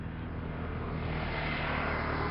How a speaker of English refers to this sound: And in Bondi today, that was the Bondi rescue truck zooping past to rescue somebody.